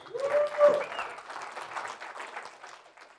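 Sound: audience cheering and applauding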